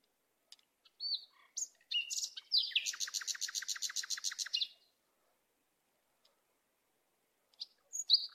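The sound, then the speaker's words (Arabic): Sparrows chirp with a few quick tweets, then a rapid trilling burst of song lasting a couple of seconds, in the late afternoon as the birds return to their nests. A short pause follows before more scattered chirps, with no talking. “استيقظ عمر على صوت العصافير.”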